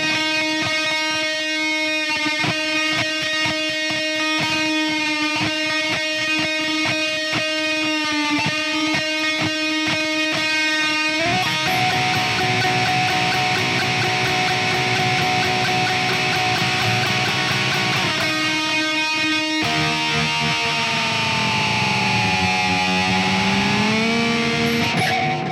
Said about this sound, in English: So the guitar part, 6th of May, lots of delay, lots of distortion, lots of clever whammy bar use.